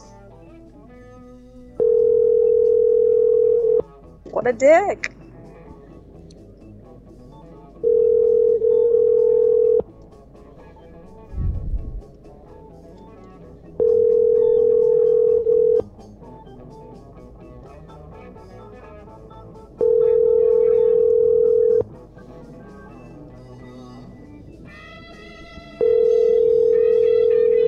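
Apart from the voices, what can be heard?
telephone call ringing unanswered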